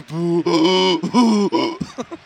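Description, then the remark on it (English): A person makes drawn-out booing sounds, several in a row with short breaks, alternating between booing outward on the exhale and inward on the inhale, fairly loud, ending in breathy gasps. “In fact, I can boo both outward and I'm inward.”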